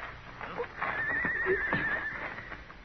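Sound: horse neighing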